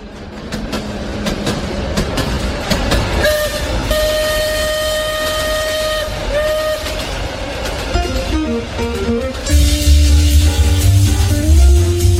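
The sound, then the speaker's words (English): A train rumbles along with rhythmic clatter while its horn sounds in long, steady tones, the horn's pitch shifting partway through before a louder, rougher passage with a lower horn blast at the end, used as the opening of the radio show Truth Express with Erskine. “Aboard the Truth Express with your conductor, Erskine, who give you the latest on national news, politics, policies, business, and government issues.”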